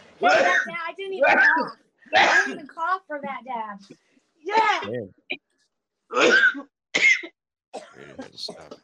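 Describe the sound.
A run of harsh coughs, about seven bursts in uneven clusters with short pauses between, some throaty and voiced, ending in a few weaker hacks.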